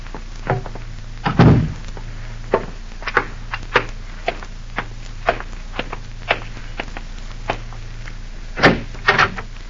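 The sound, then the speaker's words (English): A door thuds shut with a heavy knock, followed by a series of light clicks and taps, then another solid thump near the end; no one speaks. “Close that door, Anna. Of course.”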